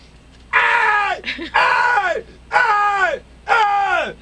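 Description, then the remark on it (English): A very loud screaming alarm clock lets out four shrill, scream-like bursts about a second apart, each sliding downward in pitch, with no talking over it. “Let me give you an example of how loud it is”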